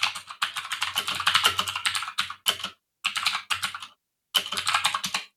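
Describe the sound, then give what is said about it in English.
Rapid typing on a computer keyboard while searching Google, a dense clatter of crisp key clicks in bursts separated by short pauses, with no voices. “Oh boy, you do not want to Google what I just Googled.”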